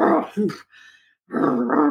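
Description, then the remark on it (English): A human voice mimics a dog, letting out gruff barks and a low growl in two close bursts separated by a brief, quieter breathy pause, during a five-minute session with a woman lying on a table. “So I just barked and growled through the whole session of this 5 minutes of this lady on the table.”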